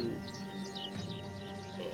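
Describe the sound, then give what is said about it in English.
Birds chirp in quick, overlapping tweets at a low level against a steady hum of background noise, with no one speaking. “You guys are scaring the birds. Yeah, I can hear that, yeah.”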